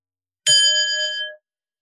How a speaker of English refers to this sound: I'm going to ring a bell, but I'd like you to rest in the state as much as you can.